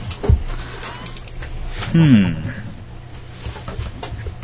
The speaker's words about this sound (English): Oh man, with the burps. You got it? You really got to stop that,